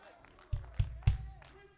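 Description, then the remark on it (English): A few scattered handclaps from about five people, reacting to a speaker saying slavery is demonic: three dull, evenly spaced claps about a third of a second apart, fairly faint against a low background murmur, then they stop. “Five people going to clap to that?”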